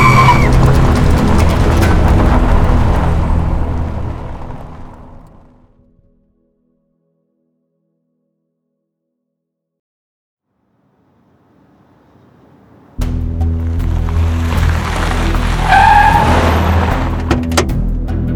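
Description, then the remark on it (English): A car roars and screeches off, its engine noise fading into silence; after a long pause, loud engine and squealing tire sounds burst back in abruptly. “Get in the car!”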